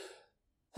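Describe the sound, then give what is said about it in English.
The fading tail of a sneeze trails off into a brief silence, then a second loud, sharp sneeze bursts in right at the end, breathy and noisy with a voiced edge. “Oh, no. The sneezes.”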